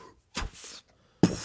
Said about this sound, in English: Oh, the door's closing. That's fine.